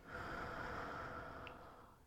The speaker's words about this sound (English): And I really want to start this out with taking a deep breath together. Breathing in through your nose and out through your mouth.